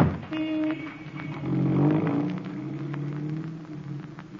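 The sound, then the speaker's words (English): A car engine hums steadily as a chauffeur-driven private car drives along to a club dinner, a low droning rumble with a faint hiss over it, continuous for the whole stretch. “I'm going straight to the dinner at the Colossus Club alone in my own car with my own chauffeur.”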